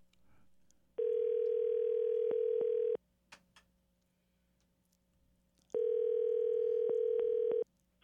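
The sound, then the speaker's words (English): A steady telephone dial tone plays in two separate stretches of about two seconds each, with a quiet gap between them, as phone lines are juggled on the Hammer Down Racing Report show. The tone is loud, flat and buzzy, and nobody speaks over it. “We're playing telephone merry-go-round here on Hammer Down Racing Report.”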